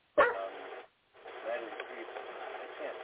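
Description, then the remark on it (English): A dog lets out one sharp, loud bark that trails off. After a short pause, a steady stretch of muffled background noise and indistinct voices carries on, all sounding thin and band-limited, as over a phone line. “Oh, it's his dog.”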